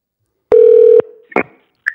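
A loud, steady electronic phone tone sounds for half a second, then two brief, softer higher-pitched beeps follow as a phone number is dialed to make a call, with no one talking.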